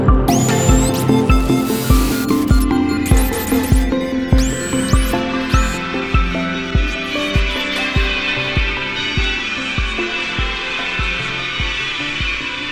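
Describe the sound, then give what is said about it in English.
Church bells of Westminster, London, peal in a steady, rapid sequence of strikes, their rich overlapping tones ringing loudly and gradually thinning out. Brief high chirping sounds flicker over the first few seconds. “The London Bells of Westminster.”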